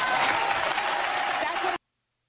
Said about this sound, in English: And the crowd cheers.